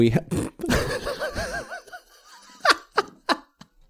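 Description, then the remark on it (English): A voice imitates a bubbly, warbling fart in bathwater, a wobbling gurgle lasting about a second, followed by a few short bursts of laughter. “A fart in the bath here.”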